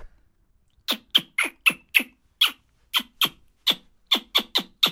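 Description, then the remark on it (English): A voice makes an invented noise imitating a mouse stuck on a toilet, with about fourteen sharp, high-pitched squeaks in quick, uneven succession, starting after a brief silence, with no talking. “It's a bit like a squeaky. Well, it's like a mouse stuck on a toilet.”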